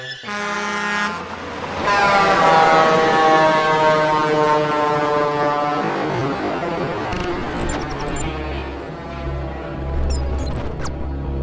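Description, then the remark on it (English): A loud truck air horn blares in one long, sustained blast, then fades into a low rumbling engine drone with a few faint higher tones near the end. “Welcome to the truck dimension. Honk, honk. Honk, honk.”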